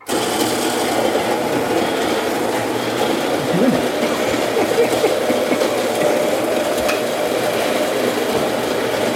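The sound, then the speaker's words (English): A blender grinds coffee steadily for several seconds, a dense, rattling mechanical roar that holds an even loudness throughout, with no talking over it. “So I'm gonna grind this up for you.”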